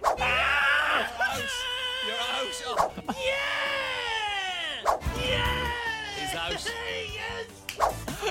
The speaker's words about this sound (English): Remember you got so annoyed at my screaming that you told me off air, please stop it. And then you didn't.